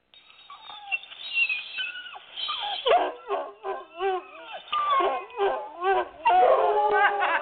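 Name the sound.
dog barking and howling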